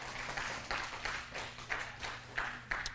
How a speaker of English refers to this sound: Go ahead. If you're going to clap, do it.